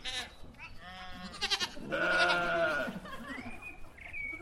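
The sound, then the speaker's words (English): Sheep bleat several times in close succession, building to one long, loud, wavering baa, with thinner high-pitched cries trailing after it. No one speaks. “Scary sheep, and plenty that I'd never seen before.”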